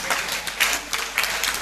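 A crowd in a church claps together in a dense, steady patter of many hands, with a few louder swells, and no voices over it.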